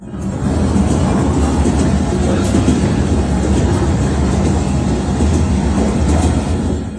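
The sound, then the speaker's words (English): Steady, loud rumble from inside a moving Vietnamese passenger train, in a booked bunker section, with heavy low-end roar and a constant rattling hiss that holds evenly for the whole stretch, no voices. “The Vietnamese Train”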